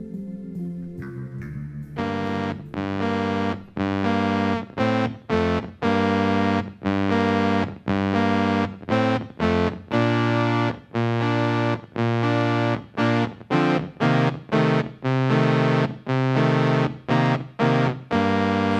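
After a brief murky intro, a heavily distorted, effects-laden guitar plays loud sustained chords in a choppy, stop-start rhythm, with no voices, part of a rock song.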